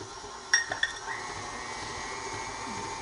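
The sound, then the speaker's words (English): An electric mixer whirs steadily throughout with a constant mid-pitched hum as sugar is gradually poured in and the mixer is sped up, interrupted early by two or three sharp metallic clinks against a bowl. No one speaks. “I'm speeding up the mixer to get that all in there.”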